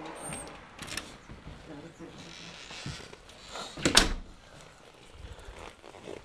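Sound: door opening and closing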